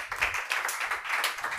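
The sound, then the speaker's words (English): A church audience claps for Jesus together in a steady, dense patter of many hands, bright and crisp, holding at an even loudness with no voices over it. “Will you clap unto Jesus?”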